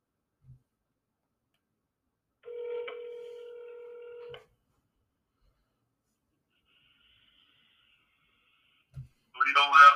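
A steady electronic phone tone sounds for about two seconds, bracketed by faint clicks, as a telephone call is placed and rings through; near the end a brief burst of noise suggests the line picking up.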